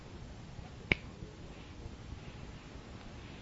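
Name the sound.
finger snap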